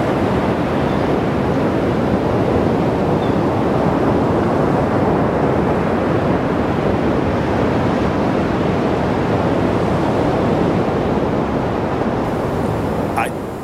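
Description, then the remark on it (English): A steady, roaring wash of crowd cheering from a sound effect, so blurred and continuous it resembles ocean surf and sounds very far away, holding at a fairly loud level throughout before cutting off at the end. “I'm going to hit cheering.”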